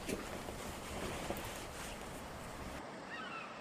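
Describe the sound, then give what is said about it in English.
Waves on Lake Sanity wash steadily onto a sandy shore, a continuous hiss and rumble mixed with wind, easing slightly toward the end. “I was thinking of yonder waves.”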